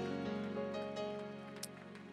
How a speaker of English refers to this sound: Can you clap your hands to Jesus Christ one more time?